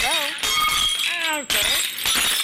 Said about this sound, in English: It just swung around and knocked a glass of prune juice right off the table.